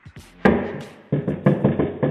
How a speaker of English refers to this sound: Great knock. Yeah. It really was. Sounds like the police. It was, very much.